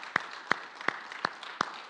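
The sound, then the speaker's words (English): Steady rhythmic hand clapping, about six sharp claps spaced evenly, as a church audience claps together in time over a low, diffuse hum. “Let's give the Lord a mighty hand clap.”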